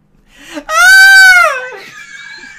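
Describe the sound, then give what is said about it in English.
A person imitates a girly scream: one loud, shrill, sustained shriek that holds for under a second, then wavers and trails off into a thinner, quieter wail. “Can you role play the girly scream that we heard, perchance?”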